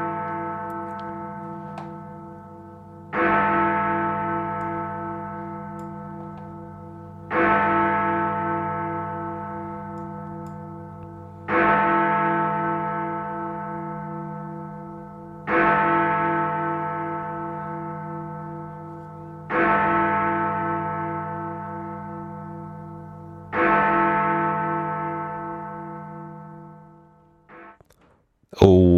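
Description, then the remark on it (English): A deep bell bongs out the hour as a time signal before the 7 o'clock news, six slow, evenly spaced strikes about four seconds apart, each ringing loudly and fading into a steady low hum before the next. “Still bonging away in the background because I only had 10 or 12, so I had to count there.”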